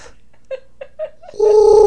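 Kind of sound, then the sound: vocal imitation, person imitating bird noises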